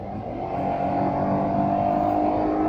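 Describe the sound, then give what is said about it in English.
A car engine roars steadily as it accelerates up to 130 to get onto Highway 401, a loud sustained drone with a slight rise in intensity, continuous with road noise and no voices. “I had to go up to 130 to actually get onto the 401.”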